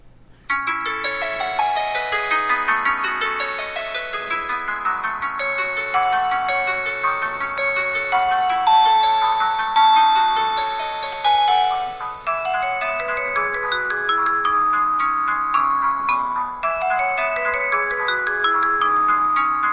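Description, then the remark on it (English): A phone ringtone called Arabesque, from the phone's My Sounds menu, plays a bright, flowing electronic melody of quick cascading notes, steady and fairly loud for about twenty seconds, with no voices over it. “Arabesque.”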